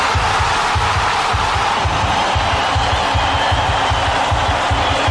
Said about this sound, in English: An eruption of cheering, yelling and flag wave. It's just one of those things when the goal hits the back of the net, it's an amazing situation.